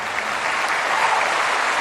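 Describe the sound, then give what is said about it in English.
Steady, dense applause from a large crowd, a continuous wash of many hands clapping at once, loud and sustained with no voices standing out. “Ooh, that's a big crowd.”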